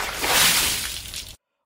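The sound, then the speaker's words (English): A bucket of ice-cold water, set up to wake someone from sleep, splashes down in one loud, broad rushing burst that swells, then tapers off over about a second before cutting to silence. “Yes, no, I'm definitely awake and very angry at the earlier me who set up that bucket of ice-cold water.”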